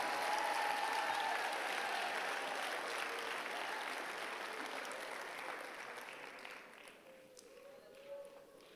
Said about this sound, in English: Come on, somebody give Jesus a round of applause.